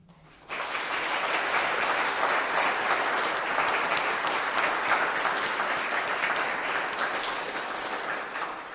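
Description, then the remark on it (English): An audience at a Mass breaks into a round of applause for the boys and girls on their first Holy Communion Day, starting abruptly and holding as a dense, steady wash of many hands clapping for about eight seconds before easing slightly at the end. “And I think we're so pleased with you, we're going to give you a big round of applause.”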